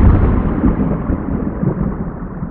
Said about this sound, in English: One thing we do know about Venus is that it has lightning. So you might hear thunder.